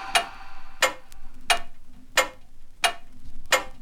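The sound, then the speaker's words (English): A clock ticks steadily, six crisp, evenly spaced clicks about two-thirds of a second apart, with nothing else but a faint low hum underneath. “Check the clock!”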